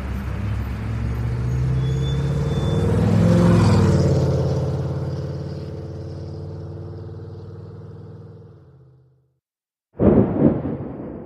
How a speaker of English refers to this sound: We're moving. Hmm? The traffic.